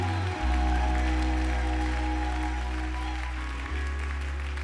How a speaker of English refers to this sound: How many believe God's gonna, come on, clap like you have faith today.